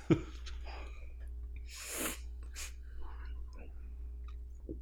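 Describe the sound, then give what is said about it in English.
A loud, breathy sniff into a microphone, followed quickly by a shorter, sharper one, both hissy bursts of air standing out over a low hum and faint murmuring; the person sniffing has had a cold for the last week. “I apologize for sniffing into the microphone.”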